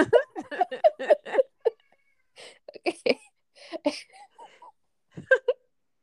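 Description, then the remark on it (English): A young boy screams and wails in a series of shrill, strained bursts with short pauses between them, loud and uneven, with no other voices over it. “Is he screaming for you?”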